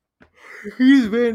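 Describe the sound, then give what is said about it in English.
A single yawn: a soft breathy intake, then a drawn-out voiced groan that swells, rises and falls in pitch, and trails off, with no one talking. “I'm yawning.”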